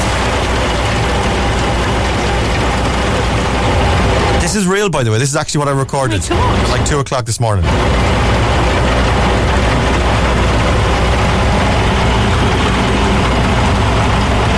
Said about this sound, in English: I was going to play for ye the sound of the rain on the Velux window. So I have it here. Do you want it? Yes, please. Is the sound of the Velux window and the rain. The heavy shower, the heavy downpours expected this morning.